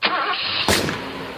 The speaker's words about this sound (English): It would be, you know, like imagine a really beautiful car that just had this horrible engine always backfiring.